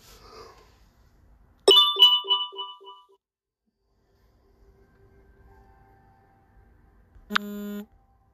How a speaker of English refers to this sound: Sorry about that, guys. My phone is a notification ticking time bomb if I don't silence it.